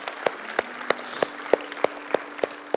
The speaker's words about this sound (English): Come on, can we give God a round of applause tonight?